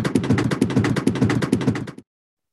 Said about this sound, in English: Do you think we have any reviews this week? I'm going to give you a $2 drum roll here.